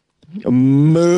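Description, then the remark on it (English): A cow gives one long, loud moo, a low drawn-out bellow that swells and rises slightly in pitch over about a second, with nothing else around it. “Moo on the cows using the porta potty.”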